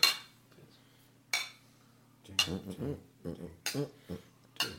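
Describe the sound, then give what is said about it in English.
Glasses clink together in a toast, several sharp, bright chinks spaced irregularly across the moment, with people talking in between the later clinks. “Anyway, so all of us, let's just raise a glass.”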